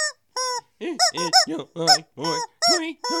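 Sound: chicken squawk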